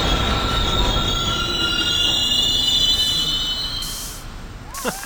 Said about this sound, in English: Oh, come on, let's get this train stopped.